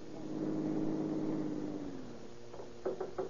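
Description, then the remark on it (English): A car engine hums steadily, then its pitch drops as the car, driven over a field toward a steep hill, slows and settles to a stop at the bottom of the hill, followed by a few short knocks. “At the bottom of the hill, he stops his car and waits for Captain Chitwood.”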